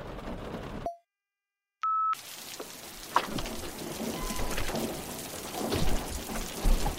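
Steady rain hisses and patters, broken early on by a brief silence and a short electronic beep, then the downpour resumes with scattered louder drops; no one speaks.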